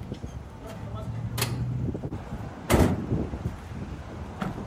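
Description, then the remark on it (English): A van's sliding door slams shut with one loud thud as a person is put into the van, preceded and followed by fainter knocks, over steady wind and a low rumbling background. “That's right, get in that tiny little door. Get in the van.”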